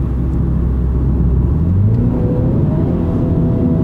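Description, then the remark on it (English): A turbocharged car engine drones steadily, its low rumble rising in pitch as it accelerates in sport mode, with a muffled interior cabin quality and no voices. “If you slow down and wind the window down, does the engine noise get better or worse?”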